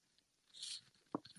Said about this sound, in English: One second, I'm going to take a sip of water.